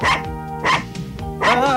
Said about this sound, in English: Nice doggy. Good doggy.